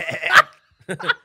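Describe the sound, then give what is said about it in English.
A person imitates a sheep's bleat with two loud, wavering vocal bursts, the first longer and rising in strength, then a short pause before a shorter second bleat. “Sheep are fucking thick, dude. You sounded like one there too.”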